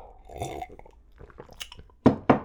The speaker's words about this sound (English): Coffee. My coffee's in my hand. I should drop it. Should I? No. I'm going to take a sip.